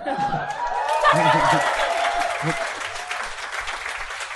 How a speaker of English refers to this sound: Let them clap. Oh, yeah, no, you're right. Let them clap. You're right. Let clappers be. Little smattering there. I got two smatterings back to back.